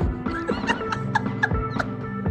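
A turkey gobbles loudly and up close, a rapid warbling burst of throaty pulses that rattles on for about two seconds with no talking.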